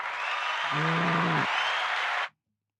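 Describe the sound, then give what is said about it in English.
An audience gives a burst of cheering and clapping to welcome a guest, a dense roaring wash with a single voice whooping partway through, then cutting off abruptly after about two seconds. “So we'll give him a big cheer”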